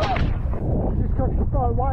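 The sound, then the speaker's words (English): A humpback whale breaches off the coast of Australia and crashes down onto a wing surfer in a loud, heavy boom of rushing, churning water that roars for two seconds, with brief raised voices crying out over it. “Wing surfing off the coast of Australia when a humpback whale came out of the ocean and basically just body slammed him.”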